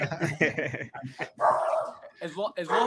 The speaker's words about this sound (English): Dogs are barking.